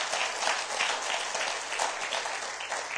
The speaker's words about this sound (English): Would you just stand for a moment? Can we give him a round of applause and just Hallelujah.